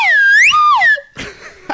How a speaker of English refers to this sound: We've been receiving some negative feedback with that slide whistle.